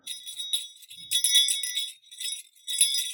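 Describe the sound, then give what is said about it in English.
A small jingle bell rattles in the background in a few quick bursts of bright, tinkling metallic chimes, fairly soft, with no voices. “Oh, did I just hear like a little jingle bell in the background?”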